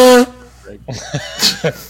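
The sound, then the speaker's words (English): A person blows their nose with a short, loud honking burst right at the start, followed by quieter voices talking. “I've got to blow my nose.”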